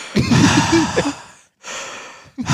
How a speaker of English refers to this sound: So, okay, hold on. Can you hear me breathing? Oh, well. Now? Okay. He's like, can you hear me breathing?